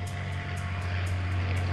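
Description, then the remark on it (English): Jeffrey Epstein's private propeller plane, known as the Lolita Express, drones steadily, a deep constant engine hum with faint rhythmic pulsing on top. No voices are heard. “Like Sheldon, Jeffrey Epstein had a private plane that he used to transport the girls to his private island.”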